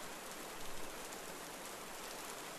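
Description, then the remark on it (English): A small brook runs through the forest over shiny pebbles as the sun begins to set, with a steady, even rush of water, a continuous hiss-like flow with no pauses and no voices. “Hear the bubbling brook run through the forest as the sun begins to set.”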